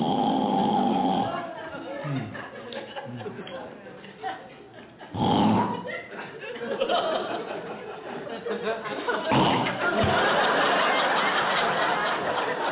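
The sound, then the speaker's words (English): A voice imitates a wife's loud, raspy snoring in bed, with several harsh snorting bursts spaced a few seconds apart and rough, rumbling breaths in between. “You ever sleep with someone that snores so bad they wake their own self up?”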